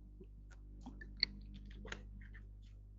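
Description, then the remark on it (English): Someone takes a quiet sip of water: soft wet mouth clicks and a swallow, with one sharper click partway through, over a low steady hum and no talking. “Excuse me while I did a little drink of water there.”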